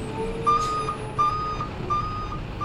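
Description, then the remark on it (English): A truck's reversing alarm beeps steadily in an even rhythm, about four beeps heard over a low, rumbling diesel engine, as the truck tries to get past some cars. No one speaks. “That truck is not going to make it past those cars.”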